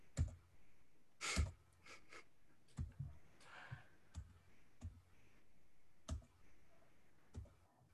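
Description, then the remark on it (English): Irregular clicks of a computer keyboard as a search is typed into Google, with sharp keystrokes scattered over several seconds and a few soft breaths in between. No one speaks. “Okay, I'm gonna start typing now.”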